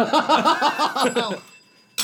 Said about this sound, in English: Oh, ding, ding, ding, ding, ding, ding, ding. Okay. Oh, we have the bells.